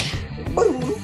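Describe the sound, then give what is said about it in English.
A single sudden sneeze, a quick voiced burst that rises sharply and cuts off within a moment. “Bless you”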